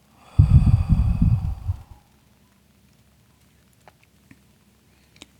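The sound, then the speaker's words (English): A single deep, rushing breath, in through the nose and out through the mouth during a guided meditation, fairly loud, lasting about a second and a half, followed by near silence with a few faint clicks. “One more deep breath in through your nose and out through your mouth.”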